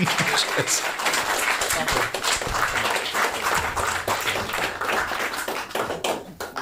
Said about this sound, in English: So, with that, sir, thank you very much. A big round of applause for our final guest